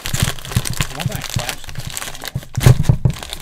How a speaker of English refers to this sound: I'm gonna open a bag of chips.